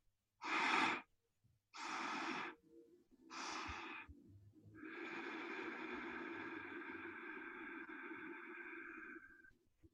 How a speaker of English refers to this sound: And we'll begin with a stair-step breath practice. Taking three small sips of air in through the nose and a long, smooth, slow exhale through the nose. It might sound like this.